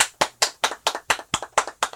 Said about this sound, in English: Well, I think I applauded a little harder at the first one. I heard some heat over here. I heard some heat.